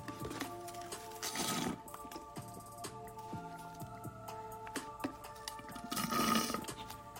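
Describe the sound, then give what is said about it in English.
Two loud, noisy slurps of a drink, one early and one near the end, each lasting under a second, over a steady tonal hum in the background. “Sorry, I don't mean to slurp.”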